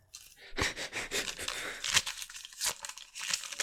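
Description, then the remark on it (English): A crinkly paper script being handled, with irregular rustling and crackling bursts scattered through the whole stretch, some sharper crackles standing out. “Why do you keep writing them in crinkly paper?”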